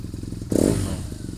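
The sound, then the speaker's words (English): A BMW motorcycle engine sputters into life in Phoenix on a clear Saturday morning, catching with a loud surge that settles into a lumpy, throbbing idle. No voices are heard. “The skies have cleared in Phoenix, and there's a BMW motorcycle about to start.”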